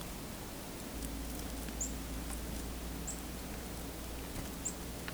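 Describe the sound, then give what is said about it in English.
A red-breasted nuthatch only a couple feet away gives three tiny, high-pitched squeaks, spaced a second or more apart, faint over a steady low rumble and hiss, with no talking. “It's a little bit of squeak.”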